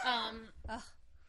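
Two barks from a pet dog, the first longer and louder, the second shorter, with no talking in between.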